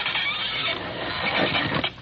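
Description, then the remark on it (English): A trap door in the floor, with a ring and a cut-out section of carpet, being pulled open: a rough, grinding wooden scrape and creak that runs steadily for about two seconds, fairly loud, with no voices. “So, all right, Watson. Open the trap door.”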